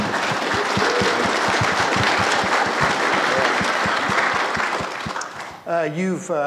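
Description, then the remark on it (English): A crowd applauds loudly and steadily for about five seconds for a man who was an All-American basketball player at two colleges, a dense wash of clapping that fades out as a man's voice begins speaking at the end. “Let's just give him a round of applause.”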